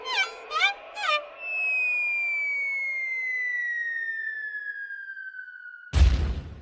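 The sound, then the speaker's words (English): The classic cartoon falling whistle, as heard in Family Guy, glides slowly downward in pitch for about four seconds, then ends in a sudden loud crash. A few short vocal sounds come just before the whistle. “1949, yet we still hear that falling sound effect in modern cartoons, like Teen Titans.”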